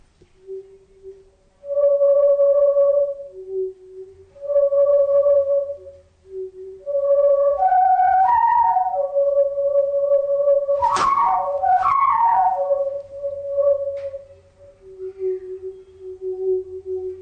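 A simple tune, The Last Post, played on a pink plastic pipe: pure, breathy tones stepping through a melody of held and short notes, rising to a couple of sharp high squeaks midway before settling back down.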